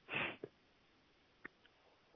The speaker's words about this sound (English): Take a sip of this tea real quick.